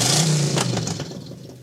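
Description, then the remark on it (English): A heavy bus engine revs loudly as the bus travels at night, a deep rumbling roar that surges for a moment and then eases off as it settles back toward idle. “As the bus ventured deeper into the night,”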